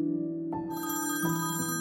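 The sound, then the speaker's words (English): A telephone bell rings loudly and steadily, its bright metallic trill repeating in close succession with a fresh burst about every three-quarters of a second, with no voices; an alarming phone call received in 2000. “Then in 2000, Edith's stepmom, Carol, gets an alarming phone call.”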